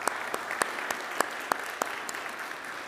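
A crowd claps steadily to welcome a new part-time missions coordinator, a dense wash of applause with a few sharper, louder claps landing at a quick, even rhythm. No one speaks.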